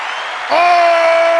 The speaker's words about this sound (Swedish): En applåd för det. Ja, för att packa in.